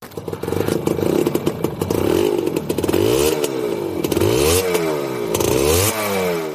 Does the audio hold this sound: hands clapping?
no